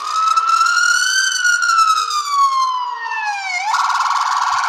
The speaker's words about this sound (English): That noise can only mean there's a master in our midst. Those alarms can mean only one thing. A master has entered the podcast.